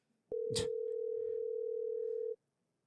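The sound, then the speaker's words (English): A phone's outgoing ringing tone sounds once as a steady, clear electronic hum lasting about two seconds, opening with a brief burst of noise before cutting off into silence. “Got to call the other one.”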